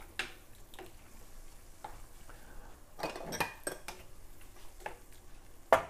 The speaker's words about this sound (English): So... all right, so I'm going to put all those olives in with those tomatoes. I'm gonna stir it, and these are bubbling like crazy.